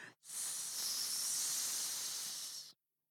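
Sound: snake hissing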